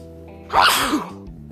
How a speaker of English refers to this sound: I'm sneezing. Look at that. And I think I'm going to leave that in the recording too.